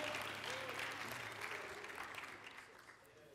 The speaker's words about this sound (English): As you're being seated, why don't you give another hand clap of praise to the Lord? God bless you today.